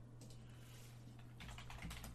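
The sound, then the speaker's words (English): Rapid keyboard typing, a run of light clicky keystrokes that grows busier toward the end, over a steady low electrical hum with no voices. “Yeah, your keyboard doesn't work.”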